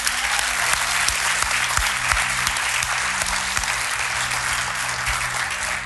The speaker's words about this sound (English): You know, I know you guys are clapping for the video, but actually, can we give a hand for anybody that's volunteered for anything in this church? Can we give you a hand right now?